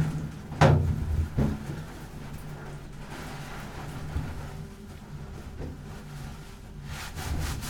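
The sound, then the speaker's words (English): A door is opened with a sharp click and a heavy thud, then a softer second knock, followed by several seconds of low, rumbling room tone with no voices. “I find there is nothing more scary than a closed door.”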